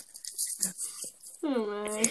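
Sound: dog barking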